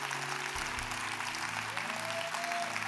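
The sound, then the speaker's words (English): A church audience cheers and applauds steadily, a dense wash of clapping hands while sustained organ or keyboard chords ring underneath, as people are urged to come up to the front. “Come on, come on, cheer them on, church, cheer them on.”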